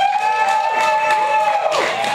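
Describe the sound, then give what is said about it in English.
An audience votes by applause for Metal Gear Solid 5 as its favorite game of the year, applauding and cheering loudly and steadily for about two seconds, with sustained whistles ringing over the noise of the crowd. “We're gonna do it by applause, but so you can only vote once, right?”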